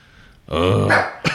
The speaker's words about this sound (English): All right, Pepper's in. There you go. All right, we got Pepper. She was barking because our other dog was at the door.